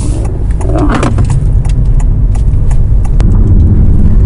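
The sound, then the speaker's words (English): Chunky car tyres glide over ramps and bumps on a road while the car is driven in electric mode, a deep steady rumble broken by scattered soft thuds and clunks, heard from inside the vehicle with no talking. “You can really feel them lovely chunky tyres just glide over all the ramps and bumps on this road.”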